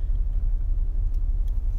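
A steady, deep engine rumble fills a car interior, a continuous low drone with faint, brief ticks above it and no voices.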